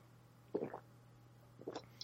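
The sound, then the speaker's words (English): Two short, wet slurping sips of orange LaCroix sparkling water, about a second apart, with a faint steady hum underneath and no talking. “This is good water, cousin. What kind are you drinking? I got the orange LaCroix.”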